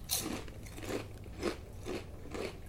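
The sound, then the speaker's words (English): Crunching on cheesy quesadilla flavored tortilla chips: five or six crisp, crackly bites in a steady rhythm about half a second apart, each a bright snap over a low, constant background hum, with no talking. “Smells like cheese chip to me. Not a quesadilla, but... Let's chip cheers.”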